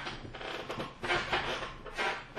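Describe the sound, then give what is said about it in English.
A chair squeaks and creaks in a few short strained bursts as someone shifts their weight on it, moderately loud, with no talking. “You're pretty squeaky, too.”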